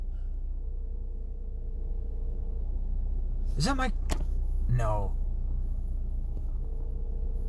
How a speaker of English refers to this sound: Is that somebody in their fucking car? Can you hear that?